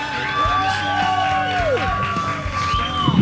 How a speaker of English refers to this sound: Have Kevin Costner with us. For the people at the State Fair sitting in front of us, can you give a big cheer for Kevin Costner?